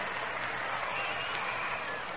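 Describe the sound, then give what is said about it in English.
A steady, dense wash of crowd noise at a ballpark during the eighth inning of a baseball game, a constant roar of many voices blending together with no pauses, loud and unbroken throughout. “And the crowd is a bit noisy right now.”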